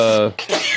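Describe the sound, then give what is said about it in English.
A single sneeze: a short voiced intake rising into a sharp, breathy burst that trails off with a hissy noise. It's loud and stands alone with no talking over it. “bless you.”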